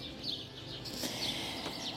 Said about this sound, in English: But you hear the voices of birds, I think. The birds are there.